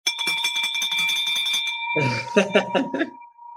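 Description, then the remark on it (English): A bell rung in celebration rings rapidly and loudly with a bright, sustained metallic tone, then voices break in over it as the ringing fades toward the end. “He actually bought a bell for us so we could ring it ourselves.”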